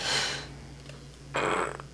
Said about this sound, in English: Okay, I just yawned.